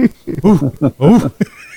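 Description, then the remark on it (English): A person imitates an orangutan with a quick run of five or six loud, hooting vocal bursts whose pitch swoops up and down, ending abruptly in quiet. “Make it sound like an orangutan.”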